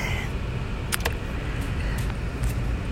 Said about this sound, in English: Traffic on the way to work.